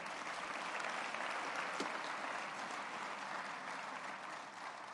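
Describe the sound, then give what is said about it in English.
An audience claps steadily, a dense wash of many hands applauding at once with no break, holding an even level for about five seconds before easing slightly at the end. “Let's get along a hand clap.”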